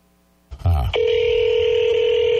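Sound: telephone dialing and ringing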